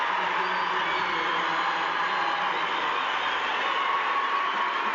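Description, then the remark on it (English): A large indoor arena crowd at a BYU Cougars versus St. Mary's basketball game cheers and roars after a St. Mary's turnover, in a steady, dense wash of noise that holds at an even, loud level for the whole stretch, with no single voice standing out. “And the crowd into it now.”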